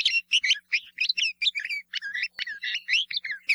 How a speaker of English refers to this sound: The name bulbul comes from a Persian word for nightingale, but the scratchy and throaty calls of the bulbul are not considered by many to be as melodious as those of that well-known bird.